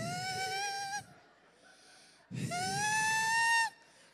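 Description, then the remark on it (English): Two long, strained, wheezy breaths, each lasting about a second with a pause between, voiced and slightly rising in pitch: a person breathing heavily to hold back crying. “You had to do the heavy breathing.”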